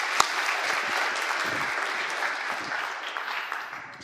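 A crowd applauds steadily for about four seconds, dense clapping from many hands that stays fairly loud and fades slightly at the end. No one speaks over it.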